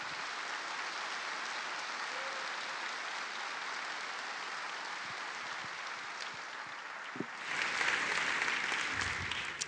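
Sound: audience round of applause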